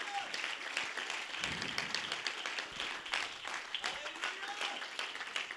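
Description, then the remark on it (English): A church audience claps together as praise to the Lord, a loud, sustained wash of applause, dense overlapping hand claps continuing steadily for several seconds with a murmur of voices mixed in. “Somebody give the Lord a hand clap of praise across this building.”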